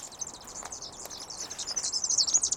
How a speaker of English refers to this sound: Oh, two tiny birds have flown into the bush beside the path. Can you hear them twittering away? They are superb fairy wrens. What a beautiful song. Fairy wrens are round little birds.